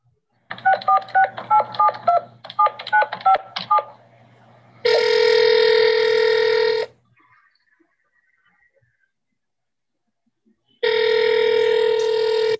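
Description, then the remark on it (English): A rapid run of touch-tone beeps dials a phone number in two quick bursts to call a man held in prison, followed by two long, loud ringback tones separated by a few seconds of silence. No one speaks. “I'm going to try him now, see if he got the phone, see if he got the care package.”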